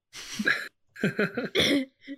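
A short fit of coughing brought on by pollen: a harsh opening cough, then a run of rapid choppy bursts and a final small cough, moderately loud with no talking.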